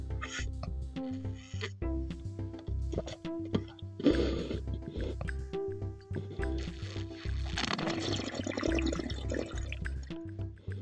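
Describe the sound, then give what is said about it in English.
Loud sips and gulps as a person drinks water, coming in a couple of wet bursts, with a steady musical hum running underneath. “Let me get a sip of water.”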